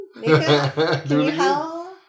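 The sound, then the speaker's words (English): A person imitates a howl, a sustained, wavering voiced tone that swells and glides in pitch for about two seconds, with a brief break midway. “Can you howl? Oh, so much better than mine.”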